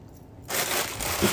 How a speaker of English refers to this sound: Okay, there's gonna be some crunching going on. I'm sorry.